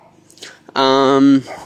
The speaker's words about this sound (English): There's an annoying barking dog, so you're going to have to bear with me for this one.